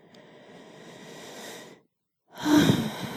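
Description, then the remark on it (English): A person yawns: a long, airy inhale that swells, a brief silent pause, then a louder, breathy release. No talking. “Maybe yawning does something with endorphins, maybe.”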